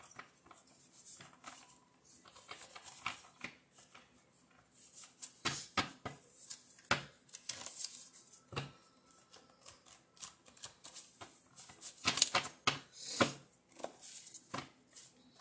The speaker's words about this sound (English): All right. Let's jump right in. Let's shuffle our jar cards.